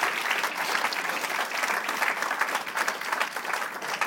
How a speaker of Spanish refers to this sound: ¿Qué le parece si denle un aplauso al Señor y vamos a orar?